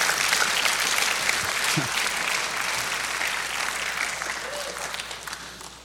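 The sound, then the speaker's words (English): An audience breaks into sustained hand clapping applause as praise to the Lord, a dense, steady wash of many hands that stays loud throughout before tapering slightly at the end, with faint voices mixed in. “Oh, give the Lord a hand clap of praise.”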